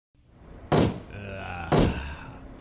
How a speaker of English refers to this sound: stop banging your head on the table. It's very distracting.